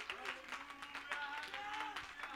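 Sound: audience clapping hands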